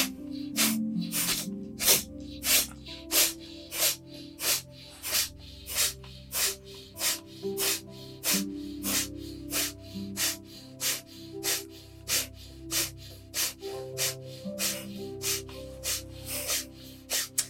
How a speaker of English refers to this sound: And maybe just do a little bit of breath of fire. This time, just sniff.